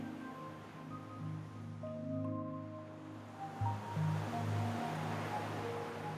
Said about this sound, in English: Listen to the ocean.